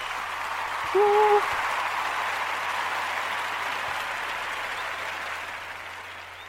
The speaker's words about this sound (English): And I think that's a very wordy shout, so loud moment. So let's get the round of applause going right there.